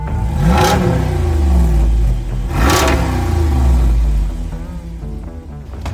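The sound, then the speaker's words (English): A Jeep fitted with a 392 V8 muscle car engine making 470 horsepower revs hard twice, each blip a loud, throaty roar climbing then settling back to a deep, burbling idle, with no voices. “This is a muscle car engine in a Jeep.”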